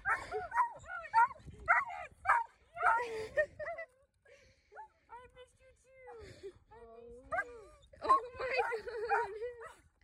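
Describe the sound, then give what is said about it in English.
A dog yaps in quick bursts, then lets out drawn-out whimpering whines before breaking into another flurry of excited barks. “Like, everyone loves my dog, and they just go, oh, and you're here, too.”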